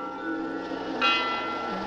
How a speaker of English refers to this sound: Sister, did you hear the bell?